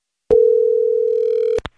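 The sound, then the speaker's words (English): A steady, loud telephone dial tone hums for over a second while a phone call is being placed, framed by a sharp click as the line opens and another click with a brief blip as it cuts off. “So let's try and get him on the phone.”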